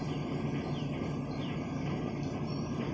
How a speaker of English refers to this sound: I'm doing laundry again. Can you hear my washing machine so loud and obnoxious? I'm very sorry.